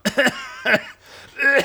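Several harsh coughs in quick bursts from a person who has been sick: a double cough, a single one, then another after a short pause, with no talking.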